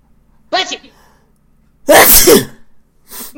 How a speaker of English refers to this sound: Bless you. On air. That's right. You heard it here first. I sneezed. I did a sneezy thing.